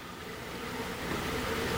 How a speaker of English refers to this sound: No one answered Celeste's door, but I heard a shower going inside